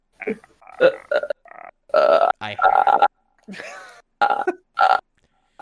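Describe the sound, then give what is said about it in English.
A voice imitates the creepy ghost noise from The Grudge, a throaty clicking rasp repeated in several bursts, mixed with guttural, burp-like vocal noises. “Especially when the ghosts start making that creepy grudge noise.”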